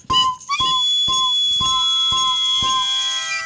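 A car's speeding alert tone, sounding when the driver exceeds the speed limit, chimes six times in a quick, steady rhythm, each bright electronic ding ringing on into the next, fairly loud and with no voices.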